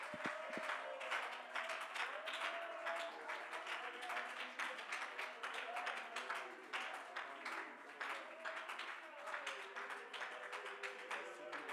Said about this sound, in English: Let's clap our hands and shout unto God with a voice of triumph. Let's bless his name.